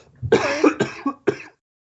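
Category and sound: human body sound, cough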